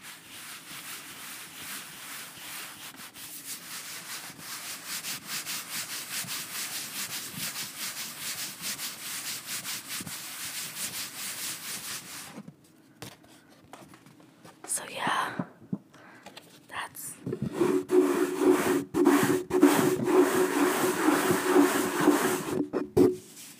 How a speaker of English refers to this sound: I thought we would play with some paper. We can fan ourselves. We can tap with the paper. We can rub the paper.